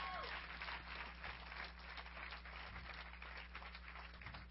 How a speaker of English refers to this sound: Come on, let's give them a hand clap for being here.